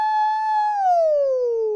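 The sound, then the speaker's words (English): A single voice mimics a siren, holding a steady high tone before sliding smoothly downward, fairly loud with no other sounds around it. “Do I sound like a siren?”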